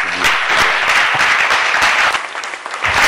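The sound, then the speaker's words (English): Steady, loud applause from an audience for honorable Collins after his remarks, a dense wash of many hands clapping continuously with no pauses and no voices over it. “Please, a round of applause for him.”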